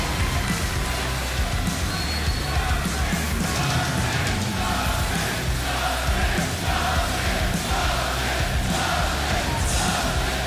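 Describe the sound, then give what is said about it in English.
A large arena crowd in Texas roars and cheers continuously as a wrestler comes out to the ring, a dense wall of voices with scattered yells and shouts rising out of it, loud and sustained for the whole stretch. “Yeah, Texas, of course you would cheer.”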